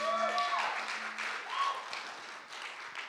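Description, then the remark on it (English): A crowd applauds the worship band steadily and fairly loudly, a dense wash of clapping with some brief whistle-like tones and a low sustained hum mixed in. “Hey, can we give the worship band a round of applause, please?”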